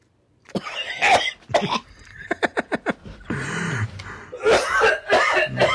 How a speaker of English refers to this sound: That one right there is for our buddy Skip. That's disgusting. He'll appreciate that cough you just threw in there.